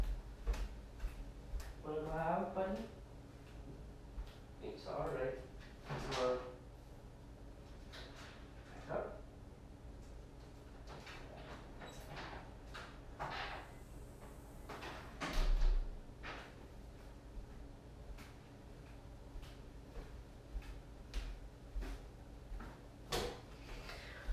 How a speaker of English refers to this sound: There is an amazing dog here. I need to open the door for him to get out of the house. I'll be back.